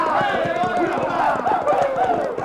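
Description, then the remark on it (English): Horses gallop in a steady, rapid pounding of hooves that runs through the whole stretch, loud, with voices shouting over the commotion. “Try to spook the horses and scatter the wagons.”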